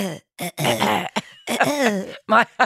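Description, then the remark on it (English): A voice makes a series of tickly throat-clearing coughs, several raspy bursts separated by short pauses, loud and rough with a gravelly, rumbling texture. “It's not a great cough, and it's not really a... It's something else.”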